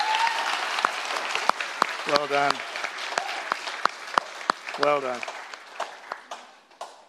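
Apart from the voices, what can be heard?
audience applause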